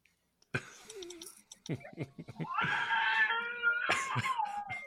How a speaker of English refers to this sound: showing off his baby screaming.